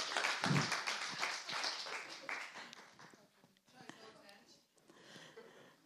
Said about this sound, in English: Give them a round of applause. Well done, guys.